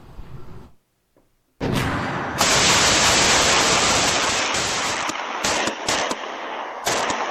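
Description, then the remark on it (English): After a brief quiet moment, loud gunfire erupts in a dense, continuous barrage during a shootout between a homeowner and a group of men trying to burglarize his house early on a Monday morning, broken near the end by a few short gaps before more shots ring out. No one speaks. “You can see the evidence on this BMW from that shootout, just riddled with gunfire.”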